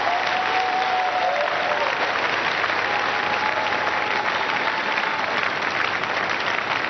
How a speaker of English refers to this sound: Amen. I believe you are clapping for Jesus Christ. Put your hands together beautifully for our Lord and Savior Jesus Christ.